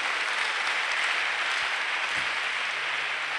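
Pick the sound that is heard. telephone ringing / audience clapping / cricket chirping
audience clapping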